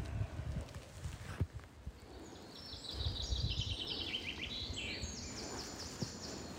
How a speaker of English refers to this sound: I've just paused listening to the bird song.